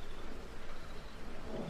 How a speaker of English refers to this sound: A thunderstorm was passing through the city, and most of everybody was asleep.